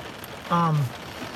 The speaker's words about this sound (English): I am going to wrap this up because I think it's time to wrap up, and the rain is coming down. I think we should be able to sit here silently and just enjoy it on the windshield for a little while.